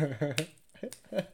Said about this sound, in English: I can snap my fingers.